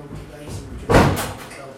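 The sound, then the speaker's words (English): A heavy metal holding cell door slams shut with a single loud, reverberant clang, its echo fading while a voice murmurs faintly in the background. “That the door of the holding cell shuts at 10, and after that you're lying on the ground in the dark with other men, just a low blue light glowing on the wall.”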